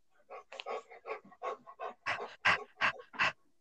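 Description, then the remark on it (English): A dog named Asher pants rapidly and steadily, a series of quick breathy huffs that grow a bit louder toward the end. “Yes, you hear him breathing?”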